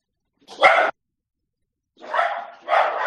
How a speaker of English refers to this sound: Instead, everybody can hear my dog.